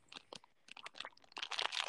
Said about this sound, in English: Oh, and who's about... eating? Who's eating? You're the one who gets distracted. Who's eating? ASMR.